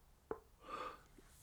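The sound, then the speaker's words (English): A soft click, then a quiet, drawn-out breathy yawn with a faint voiced tone, lasting under a second, with no talking. “Oh my god, I've got to stop yawning.”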